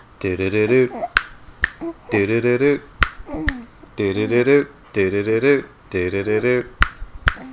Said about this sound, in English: Can you snap your fingers? I don't know. Let's see.